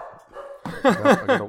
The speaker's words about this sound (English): But the thing that I keep finding myself doing is... I wait for my dog to stop barking.